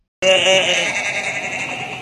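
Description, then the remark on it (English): A single loud goat bleat starts abruptly after a brief silence, a quavering nasal cry that holds steady and then trails off with a wavering tail. “Would you mind moving your goat, sir?”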